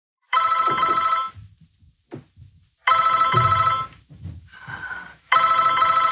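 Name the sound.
telephone ringing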